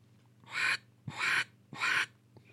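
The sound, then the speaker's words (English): Three evenly spaced, raspy quacks made by a human voice imitating a duck without a duck call, each short and harsh with a breathy hiss, separated by brief pauses. “Just do like a quack without the call.”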